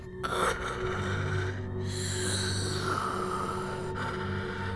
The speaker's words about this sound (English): It is still breathing this rasping sound.